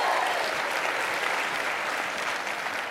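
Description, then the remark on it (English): A church audience on Resurrection Sunday claps steadily, a dense wash of applause sustained at an even, fairly loud level for the full three seconds, with no voices standing out above it. “Well, that's awkward if only a couple of you clap.”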